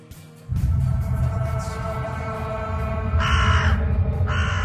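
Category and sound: bird, crows cawing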